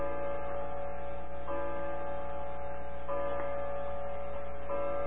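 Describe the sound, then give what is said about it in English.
A grandfather clock chimes, with ringing, sustained bell tones struck about every one and a half seconds over a steady low hum and a faint ticking. No one speaks. “Does that sound interfere with our voice? No, I don't think so. When Grandfather's chiming, okay.”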